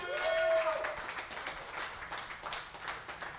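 A crowd claps steadily for a few seconds, a dense patter of hands with a high whoop or whistle rising over it at the start.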